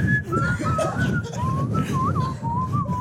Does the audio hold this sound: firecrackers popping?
no